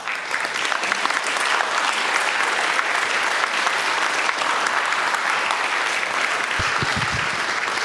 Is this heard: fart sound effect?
no